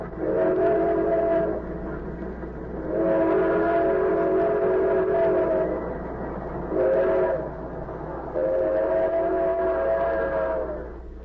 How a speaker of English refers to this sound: The train roared through the night, and one by one the slits of light under compartment doors blinked out as travelers went to their berths.